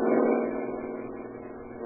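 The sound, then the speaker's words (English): A car with only one man in it hums steadily, a low droning rumble that eases off slightly as the vehicle moves along. No voices are heard. “Here comes a car with only one guy in it.”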